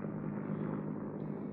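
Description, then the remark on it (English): A low-flying helicopter from a naval training station: a steady, droning engine roar fills the whole moment, a dense low rumble with a faint rhythmic flutter of rotor blades passing overhead, fairly loud and unbroken, with no voices. “Oh, a helicopter from the Naval Training Station. It's not usual for them to fly so low.”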